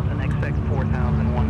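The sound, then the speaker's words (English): A small plane's engine drones loud and steady before takeoff with passengers aboard, a continuous low rumble with faint voice-like chatter riding on top. “All right, here your plane's ready to go. Are your seatbelts on and secure?”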